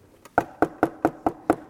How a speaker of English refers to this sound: A knock at the front door.